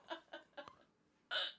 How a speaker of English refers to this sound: I'm sorry. Are you trying to hold back hiccups? I have hiccups.